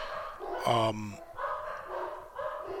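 dogs barking

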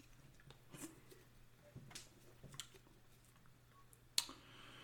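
sipping beer

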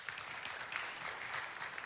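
audience clapping

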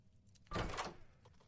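video game door opening

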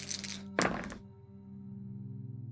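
dice being rolled

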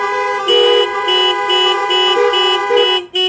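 car horns honking

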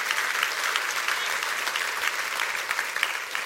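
audience clapping hands

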